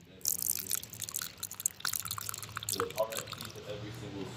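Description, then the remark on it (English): A drink is poured out onto the ground, splashing and spattering steadily for several seconds in a continuous pouring patter, with faint voices murmuring underneath. “And we're going to pour some out for the homies, for the dead ones.”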